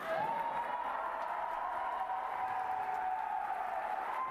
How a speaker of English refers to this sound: Why were they cheering for that? In some ways, I get it. It sounds like a great sort of Obama, JFK sort of line, and it's the sort of political line you expect.